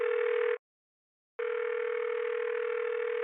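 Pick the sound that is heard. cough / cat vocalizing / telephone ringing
telephone ringing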